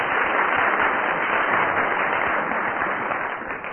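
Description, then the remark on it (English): A studio audience applauds steadily, a dense, sustained wash of clapping from many hands that holds at an even loudness for several seconds before easing slightly at the end, with no talking, after a panellist waves at them. “The audience applauded because I waved at them.”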